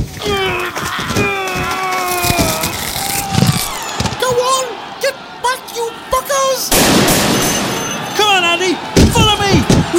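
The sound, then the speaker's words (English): Rapid bursts of machine gun fire, as people shoot their way through an angry mob, crackle through a noisy scene of people shouting and yelling, with sharp thuds and shots breaking in between the raised voices. “have to machine gun our way through an angry mob”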